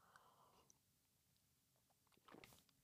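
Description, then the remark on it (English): A quiet sip of coffee, a soft brief slurp near the end after faint mouth noises, with no one talking. “Let me take a sip of my coffee.”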